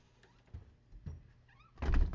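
A door swings shut with a heavy thud after a couple of softer knocks and some faint squeaky sounds, the final bang the loudest part.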